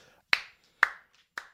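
Three sharp, close hand claps ring out at a slow, slightly uneven pace, each with a brief decaying tail, and no one speaks.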